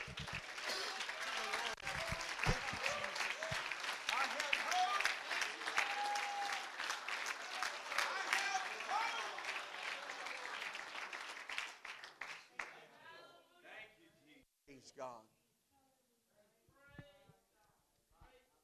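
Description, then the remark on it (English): A large group applauds loudly and steadily for about twelve seconds, a dense wash of clapping hands, before it dies away and a single voice begins speaking. “Why don't we clap our hands?”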